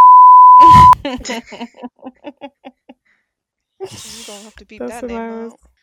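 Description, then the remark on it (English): A steady, piercing censor beep lasts just under a second, masking a spoken name at the start, then a person keeps talking in short bursts, followed by a pause and more speech. “You don't have to beep that name out.”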